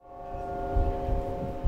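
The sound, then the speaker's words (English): Church bells ring at lunch hour on a Tuesday in downtown Roanoke, a dense, sustained wash of overlapping tones, swelling in over the first moment and holding steady, with low rumbling pulses underneath and no voices. “Church bells ring in lunch hour on a Tuesday in downtown Roanoke.”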